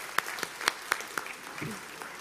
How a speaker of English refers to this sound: Can we give a round of applause to the … over here? Yeah, that was amazing.